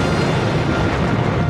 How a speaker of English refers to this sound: Captain, fire. An explosion! Two torpedoes!